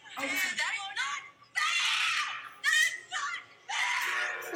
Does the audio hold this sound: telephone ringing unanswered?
no